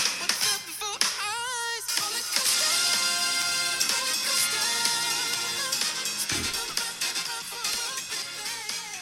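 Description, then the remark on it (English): A full, loud trio of young musicians, with added horns, plays continuously, with bright horn lines and keyboards layered over a steady groove; an early held note wavers with vibrato, and no one speaks. “It's only a trio. This particular cut, they're using some horns”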